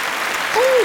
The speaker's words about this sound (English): Give us a round of applause.